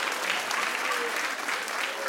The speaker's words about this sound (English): Clap if you've ever snuck into a club underage.